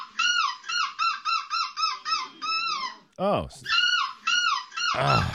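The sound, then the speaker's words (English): A person imitates a seagull with a rapid run of high, yelping screech calls in quick bursts, a brief pause with a short exclamation, then more shrill cries before voices begin. It is a title-winning seagull screech from a competition. “Anyway, he walked away with the title, and this is his winning seagull screech.”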